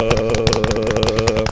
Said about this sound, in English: I'm going to send Bob out in the weather chopper, you know, just like they used to do on WKRP. Let's get the chopper ready.